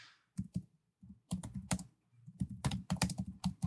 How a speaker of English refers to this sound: Is this typing interesting? Is it?